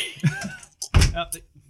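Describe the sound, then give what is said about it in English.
A door is pushed shut with a single dull, heavy thud, framed by soft voices and faint shuffling before and after. “Close the door on him, I guess.”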